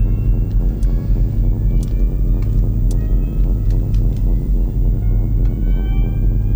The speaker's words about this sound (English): A little bit more volume on the drone. Maybe more intense is the right word. And listen to this rumble that Timo plays.